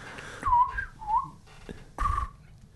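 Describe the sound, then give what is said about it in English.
In a studio, someone whistles an imitation of robin redbreast song: a few clear, sliding warbled notes in short bursts, each starting with a soft breathy puff, with pauses between phrases and no talking. “Oh, we've got a bird in the studio.”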